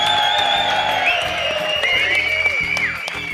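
A crowd claps and cheers steadily for a few seconds, with loud whoops and shrill whistles rising and falling over the dense, continuous applause.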